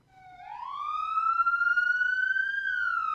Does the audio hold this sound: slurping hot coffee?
no